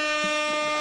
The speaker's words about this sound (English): Hold on, we gotta give you some air horns. Hold on.